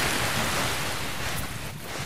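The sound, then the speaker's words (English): Steady rush of wind and surf washing over a pebble beach in sight of the wind-whipped tip of Point Pelee, a broad continuous roar with a slight dip in loudness toward the end, no voices. “Coming out into the open at the end of the trails, you're suddenly on a pebble beach in sight of the wind-whipped tip of Point Pelee.”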